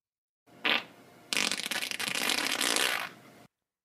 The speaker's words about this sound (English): I'm gonna say yes. That's a human fart. That is correct. Yes, it is.